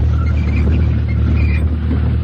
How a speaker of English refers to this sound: Backing up 3 or 4 meters, he revved the powerful engine and took a flying leap at full speed towards the offending obstruction.